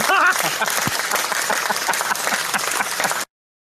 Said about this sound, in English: We pay her to clap. It's the it's like the audience in the sitcoms in the 90s. Where's the laugh track?